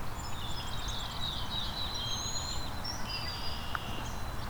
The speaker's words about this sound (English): He's not as loud as the others, though. Let me go see if I can find the brown-headed cowbird here.